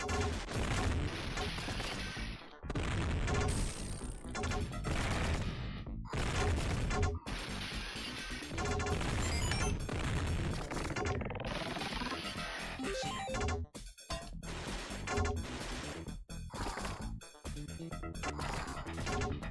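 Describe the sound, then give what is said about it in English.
A loud, dense barrage of fireworks bursts outside, crackling and booming almost continuously, broken only by a few brief gaps. No one speaks. “Oops, the fireworks.”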